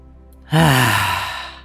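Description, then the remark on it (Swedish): After a brief quiet moment, a person takes a single deep, drawn-out breath in during a relaxation breathing exercise, fairly loud, with a soft breathy rush that slowly fades over about a second. No one speaks. “Och igen, andas in.”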